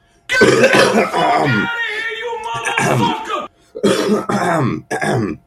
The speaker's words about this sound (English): What just happened? Nothing. You cleared your throat and asked me if I was ready.